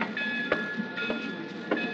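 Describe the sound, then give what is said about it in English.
A train rolls steadily along the rails, its constant rumble and faint whine punctuated by rhythmic clickety-clack thumps roughly every half second, fairly loud with no one speaking. “Flying out here from New York last night and taking a train back this morning isn't my idea of fun, though.”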